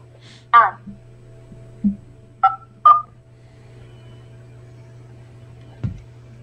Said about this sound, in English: God damn this fucking phone. I don't think it's the phone. Dial one first. To complete this call, please press the following digits. No additional charges applied. 7, 8.